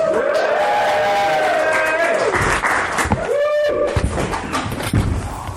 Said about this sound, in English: Okay, guys. Big round of applause for AJ Bowen.